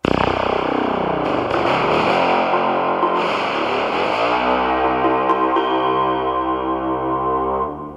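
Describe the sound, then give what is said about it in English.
A dense, sustained film score passage with layered tonal harmonies, bathed in heavy echo and reverb, loud and steady throughout before cutting off at the end. No one speaks. “It has a real echo and reverb around it as well, which is really immersive.”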